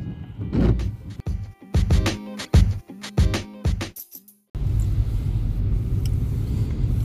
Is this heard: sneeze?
no